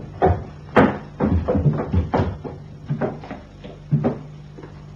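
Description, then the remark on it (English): Someone tries a locked door, rattling and jiggling it so it knocks and clatters in a quick, irregular series of sharp thumps, fairly loud. “Door's all locked.”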